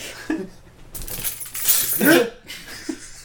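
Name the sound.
keys jangling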